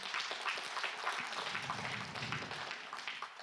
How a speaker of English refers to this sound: Yeah, you can give the Lord a hand clap.